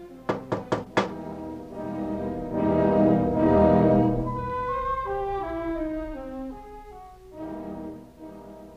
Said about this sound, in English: But, dear children, Reb Chaim was yet in for a greater surprise as he knocks at the door to enter Reb Bear's humble cabin.